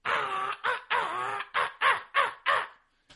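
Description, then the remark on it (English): A loud crow call sounded as a hunting locator call: two long, raspy caws followed by a rapid run of five shorter, harsh caws, ending abruptly with no talking. “So sometimes I'll get up there, and I'll start off with a crow call, and I'll just, ah!”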